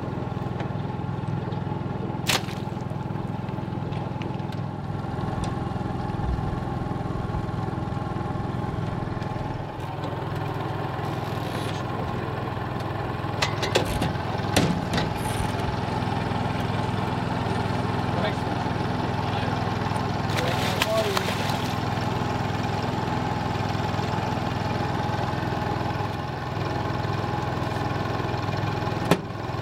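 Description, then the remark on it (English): A boat motor drones steadily as the boat heads south at night on a bowfishing trip for gar and carp, a continuous low, even hum with a slight rumble, broken only by a few brief knocks and clattering bursts. “We're on his boat, Bowfishing here, look for gar and carp.”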